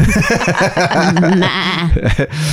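Loud sheep bleating: a run of quavering, shaky baas that follow one another almost without pause, with a final bleat trailing off at the end.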